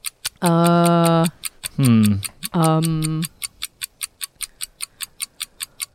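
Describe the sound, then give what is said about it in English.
A clock ticks in a steady, quick rhythm through a seven-second countdown, clear, while a voice makes long drawn-out sounds over the first half before the ticking continues alone. “Here, we'll put 7 seconds on the clock.”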